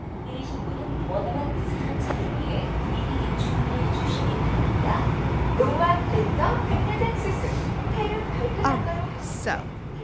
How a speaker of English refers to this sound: We're on the train.